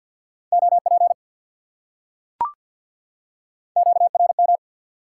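Rapid Morse code beeps sent at 50 words per minute, amateur radio contact (QSO) elements: a steady mid-pitched tone keyed in fast short bursts, sounding twice with a quiet gap between them, broken by a single sharp click. No voices.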